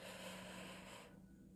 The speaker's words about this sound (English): Breathing is the most. You don't understand how important breathing is. You breathe in for 4 seconds.